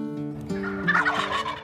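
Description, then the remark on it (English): Wild turkeys gobble in a rapid, warbling burst, several calls overlapping into a loud rolling chorus, with no talking. “In the beginning, in the intro, when you hear turkeys gobbling, oh man, that gets me fired up for turkey hunting.”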